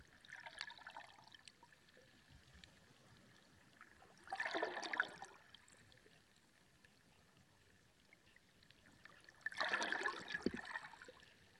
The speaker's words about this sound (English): And just listening to the water and allowing it to help you journey within.